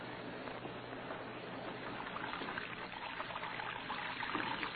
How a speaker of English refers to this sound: Red Beaver lay sprawled in his bunk, watching water pouring from his wash basin to the cell floor.